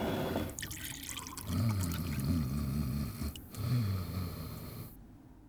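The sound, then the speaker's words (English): Water splashes and trickles as it is poured from a pitcher, followed by a few gulping swallows as someone drinks, moderately loud, ending abruptly in silence. “Oh, well, drink some more water, for goodness sake. Go back to sleep. All right. Where's that pitcher?”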